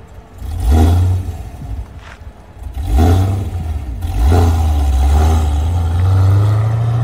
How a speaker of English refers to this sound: There is no way this cam in this car is emissions legal. Why is Hennessey getting away with it? But anyway, this is how you would expect to launch a manual CT5 Blackwing if you have a cam situation in it.